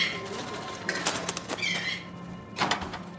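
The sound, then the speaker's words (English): Caged birds in a commander's bird collection, kept in a wall of cages, flap their wings in short, busy bursts, with soft cooing calls mixed in, over a steady low hum. “In front of me is a wall of cages. It's the commander's bird collection.”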